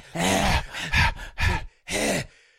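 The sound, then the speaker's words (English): A voice imitates the heavy, raspy breathing heard in a film murder scene: four loud, drawn-out breaths in a steady rhythm, each a harsh groaning exhale, with brief pauses between them. “And you see the glove. And breathing. You just hear like.”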